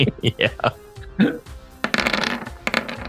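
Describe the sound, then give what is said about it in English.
Several D10 dice clatter and tumble across a hard surface in quick, scattered clicks, building into a dense rattling burst before settling, with a faint murmur of voices. “Anyway, that's why I roll like 12 times every turn.”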